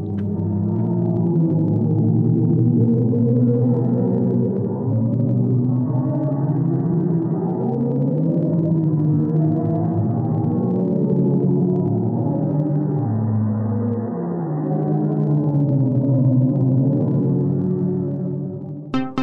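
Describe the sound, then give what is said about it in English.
NASA audio of sound in space, from a cluster's hot gas translated into a note: an eerie, deep droning hum with slowly wavering, overlapping tones swells steadily for about twenty seconds, loud and unbroken, with no voices present. “The audio that was released to the public has been described as creepy.”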